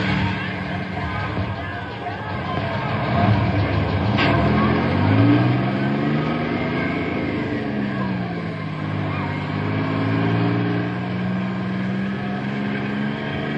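A bus engine rumbles and revs up as the vehicle pulls away, its pitch climbing through a couple of gear changes before settling into a steady drone.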